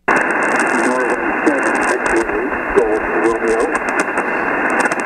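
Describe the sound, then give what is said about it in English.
A ham radio transmission swamped by continuous loud static hiss, with a faint, garbled voice barely emerging beneath the noise throughout. “The static is kind of covering you up.”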